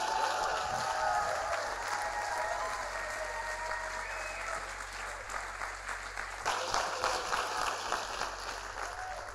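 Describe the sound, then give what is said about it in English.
A crowd at a sermon by preacher Tim Storey, told to clap and shout for God's power, claps steadily and loudly for several seconds, with scattered shouts and cheers rising over the dense, continuous applause, which swells again toward the end. “Somebody clap your hands and shout like God's powerful.”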